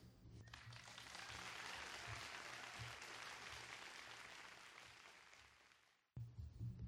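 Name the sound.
audience applause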